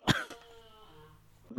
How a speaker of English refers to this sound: But almost perfectly timed next door. He was blowing his nose. Biggest blow nose ever. He blows his nose a lot.